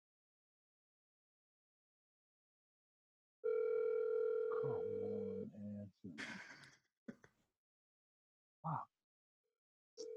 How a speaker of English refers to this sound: I'm going to put on speaker. Your speaker's fucked up, I think. You can hear it ringing? Put it on the bottom part. Yeah. Yeah, we can hear it. I can hear it.